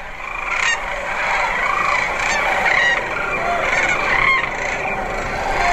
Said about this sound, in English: It's the sound of hundreds of thousands of sandhill cranes getting ready for takeoff from the shallows and sandbars of the Platte River in central Nebraska, their major stopover spot on their way to their far north breeding grounds.